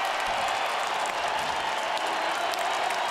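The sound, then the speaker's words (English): An arena crowd at Rogers Place applauds in a steady, dense wash of clapping mixed with cheering in the final seconds of an Edmonton Oilers hockey game against Chicago, in the evening, loud and sustained throughout with no pauses or talking. “12 seconds left, crowd here at Rogers Place, very appreciative of the effort here this evening.”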